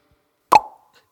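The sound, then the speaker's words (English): A single sharp pop as a cork, tied to a string, shoots from a cork gun called the Gunnerator number 2, with a brief hollow ring that fades within a quarter second, then a faint tick. No one speaks. “Out of the way, and here it comes.”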